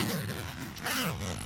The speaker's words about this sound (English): You do like a good zip.